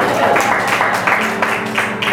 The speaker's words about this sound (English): It's a good time to clap. Clap for me.